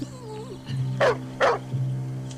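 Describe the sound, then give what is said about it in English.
A dog gives two sharp, loud barks in quick succession, with a thin high whine before them and a low steady hum running underneath. “Your dog turned on me.”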